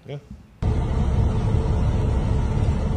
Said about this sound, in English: Oh, shit! The fucking train just came down on the blade.